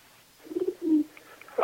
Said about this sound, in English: I swear that's a fucking owl. Is there an owl in the barn?